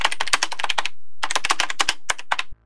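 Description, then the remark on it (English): Rapid clicking of computer keyboard keys in two quick bursts separated by a short pause, ending with a few firmer, isolated key presses, the Enter key slammed, before it stops. “I have got something here, Commander, Subbu said as he slammed the enter key and sat back on his chair.”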